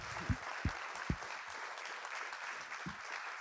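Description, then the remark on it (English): A crowd applauds steadily, a dense wash of many hands clapping at moderate loudness, with a few deeper thumps standing out near the start and again toward the end; the applause is for the speaker's father as he is invited up to the stage. “I want you to give him a round of applause.”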